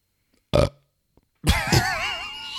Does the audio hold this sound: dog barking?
no